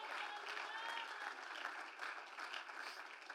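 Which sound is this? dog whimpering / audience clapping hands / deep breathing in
audience clapping hands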